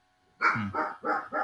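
Dogs bark in a quick run of four sharp, evenly spaced barks, fairly loud, with no talking over them.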